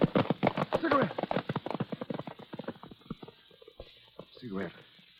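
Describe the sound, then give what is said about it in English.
Horse hooves gallop in a rapid, drumming rhythm as a rider heads out into the desert, the hoofbeats gradually thinning out and slowing, with a brief voice cry near the end. “If you don't stop, I'll have to lift you off your horse.”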